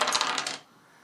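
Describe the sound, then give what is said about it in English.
A quick burst of hard clattering as Werther's Original dice tumble across a tabletop, rolled to set character ability scores. Several sharp bright clicks over about half a second, then an abrupt stop into near silence. “You picked the Werther's original dice.”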